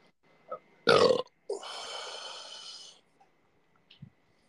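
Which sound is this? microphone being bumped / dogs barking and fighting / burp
burp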